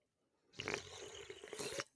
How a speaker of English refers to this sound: Did that work? Did that work? Yeah, that's like soundstage quality slurping.